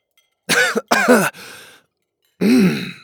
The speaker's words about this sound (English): I coughed on my drink and it shot up through my nose. Gobbers, it burned.